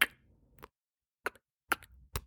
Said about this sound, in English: Like a tap dripping? No, it's clipping your nails. That's disgusting. But also, you were doing it to a rhythm, and it sounded like you had the thickest nails.